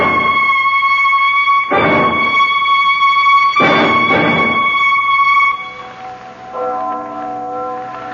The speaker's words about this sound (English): What is it, darling? That bell. I don't know if I ever want to hear a bell in my life again. That's only the church bell.